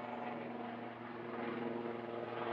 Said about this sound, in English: Sorry for the disruption with the helicopter. Let's just give it a minute to pass.